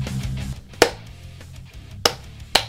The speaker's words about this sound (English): That was the clap test for the recordings,